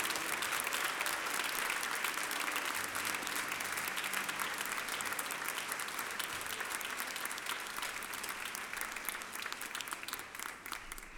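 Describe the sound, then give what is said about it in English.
An audience in a sanctuary applauds in congratulation steadily for about eleven seconds, a dense wash of clapping that holds its level throughout and thins slightly toward the end, with no voices over it. “Would you offer your congratulations with your applause tonight?”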